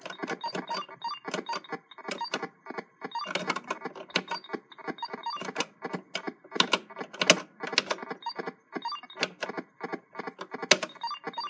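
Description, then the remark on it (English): Keys on a Texas Instruments computer keyboard clack sharply during a game of Mrs. Pac-Man, coming in irregular bursts of quick presses with short pauses between, like rapid repeated tapping on a few keys. No one speaks. “Keyboard's annoying.”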